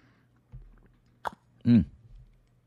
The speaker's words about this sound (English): And I have some really, really, really good hot, steaming hot McDonald's coffee here. So let me take a sip for you.